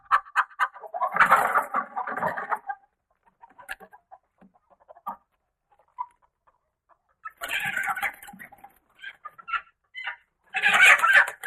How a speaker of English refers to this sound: but she thinks she is the leader of the pack, and so she is establishing the pecking order here in the hen house.